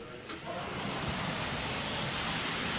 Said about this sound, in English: oh, the rain is really coming down now